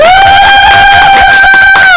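A loud, close audience cheers and claps continuously for about two seconds, with a piercing sustained whistle-like tone riding over the crowd noise throughout, no speech.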